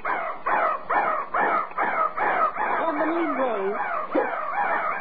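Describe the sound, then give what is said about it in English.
A mechanical clock crow, a little crow that pops out of the clock's crow's nest, caws in a rapid, loud run of about seven harsh bursts, then trails off into a warbling, strangled call, as if the clock is stuck. “Because at 3 o'clock, that little crow pops out of the crow's nest and caws 3 times.”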